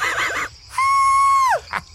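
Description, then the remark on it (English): A voice imitates a screech attack: one loud, high, steady shriek lasting under a second that drops in pitch as it cuts off, preceded by a brief warbling vocal sound. “Which counts as a screech.”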